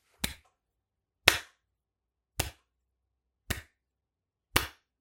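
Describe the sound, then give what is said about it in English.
A slow clap from off the set: five sharp, loud handclaps spaced about a second apart at a steady, deliberate pace, with silence between them and no talking. “There's some sort of slow clap happening from off the set.”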